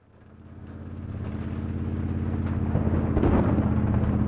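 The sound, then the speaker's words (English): Steady rain hisses at night over a deep, continuous low rumble of rolling thunder that swells gradually louder beneath the downpour, with no voices present. “It was a rainy night, and we had gone into town to fetch groceries.”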